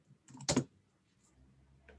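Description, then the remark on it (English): A quick burst of typing on a computer keyboard as a link to a white paper is typed in as an answer, a few soft keystrokes followed by one louder clatter of keys, then faint scattered clicks. “Actually, I'll type it as an answer here.”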